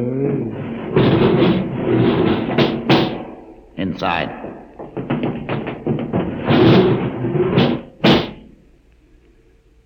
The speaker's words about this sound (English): Open the door